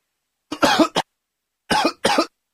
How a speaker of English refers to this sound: Oh, God, I've got a cough. Oh, excuse me.